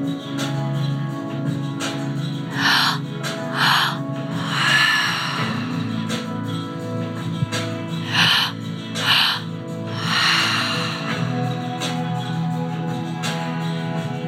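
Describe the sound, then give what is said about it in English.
Several people breathe deeply and forcefully during a breathwork session, in overlapping waves of loud rushing inhales and exhales with occasional snort-like gasps, continuing steadily with no talking. “Allow those to be noticed and then to keep breathing.”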